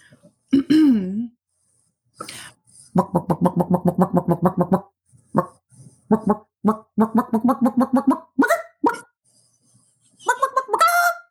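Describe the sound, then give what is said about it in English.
A person imitates a chicken, making rapid bursts of clucking and bawking with rising squawks, harsh pulsed bok-bok sounds in quick runs punctuated by higher-pitched squawks, loud and without other talk. “I can do a good chicken noise.”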